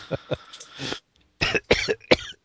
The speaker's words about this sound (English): Oh, excuse me. We'll edit that cough out.